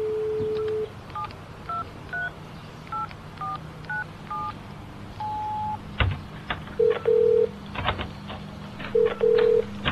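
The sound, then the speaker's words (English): A quick run of about eight keypad dialing beeps, each a short paired tone, followed by a single longer tone and then intermittent ringing tones over faint background noise. No one speaks. “You answered the phone!”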